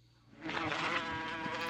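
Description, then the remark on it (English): A wasp buzzes steadily, a dense, raspy drone that swells in after a brief quiet moment and holds at a constant loud level without pause. “And just in case you need it, just in case you need not a bee sound, but a wasp sound. Oh, boy. Here you go. Here's the wasp.”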